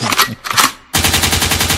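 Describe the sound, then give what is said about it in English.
Loud gunshot sound effect: two sharp bursts of fire, a brief gap, then a sustained rapid volley like automatic weapon fire, forceful with no talking. “Lakewood means rewind, the gunshot means energy.”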